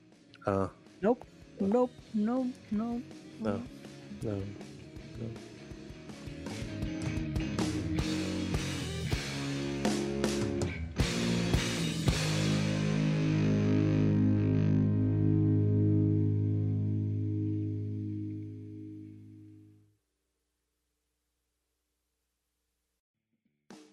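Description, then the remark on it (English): The spoken word "nope" repeats over and over through a heavy echo effect, the repeats piling up into a loud, sustained, distorted wash of sound that cuts off abruptly. “I was still noping because I was echoing.”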